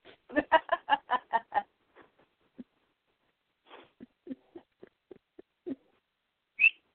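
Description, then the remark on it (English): A pet bird named Squeaker squawks from its cage in a rapid burst of harsh, clucking calls, then gives scattered softer chirps and clicks, ending with one sharp, high whistle-like squeak. No one speaks. “Talking pony bird.”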